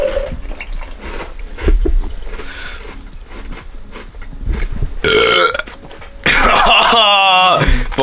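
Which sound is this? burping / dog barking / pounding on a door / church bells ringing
burping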